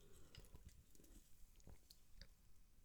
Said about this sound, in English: Let me take a little sip of my keto-friendly alcoholic beverage here.